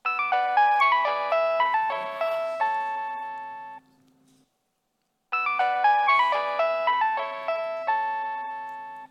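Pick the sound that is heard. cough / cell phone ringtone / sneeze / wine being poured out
cell phone ringtone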